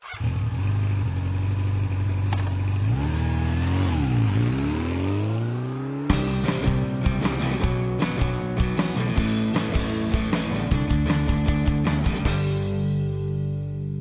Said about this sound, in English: We'll take my scooter. Let's go.